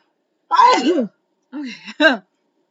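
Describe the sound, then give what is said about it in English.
A single loud sneeze with a sharp breathy burst, followed after a short pause by a briefer voiced exhale or grunt, then silence. “I don't know where that came from. But that's a sneeze.”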